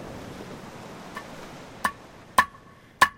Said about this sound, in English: his cousin Clifford, who's hammering a new unak, or seal hook